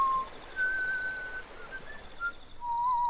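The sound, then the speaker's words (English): A man whistles a slow tune alone as he walks down to a river, holding clear sustained notes that step up and down in pitch, at moderate volume over a faint background hiss. “When everybody else had gone to bed, he walked down to the river and whistled reflectingly.”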